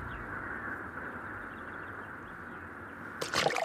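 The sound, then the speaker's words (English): A steady outdoor ambience at a pond with cattails on a warm summer day, then a sudden small splash near the end as a large frog hops into the water, with a brief spray of droplet sounds. No one speaks. “A large frog hopping into the pond startles Magpie out of her vision.”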